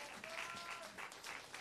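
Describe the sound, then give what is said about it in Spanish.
An audience in a church service claps together in a dense, steady burst of applause of praise to the Lord, broad and sustained throughout, with faint voices and a few cheers mixed into the crowd noise. “¿Cuánto da un aplauso de alabanza al Señor?”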